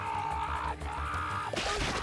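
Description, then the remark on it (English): A steady droning tone hangs in the background, then a sudden loud, wet smash bursts in near the end as a film creature effect slams into something and turns into mush. “The effect of them smashing into something and just turning into mush.”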